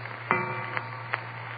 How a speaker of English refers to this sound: I hung up the receiver. And then the clock on the mantel behind me began striking.